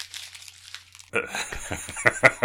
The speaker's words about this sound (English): was that the crumpling of notes in anguish that we did? You hear that? I was looking at my last minute's notes and I crumpled them up.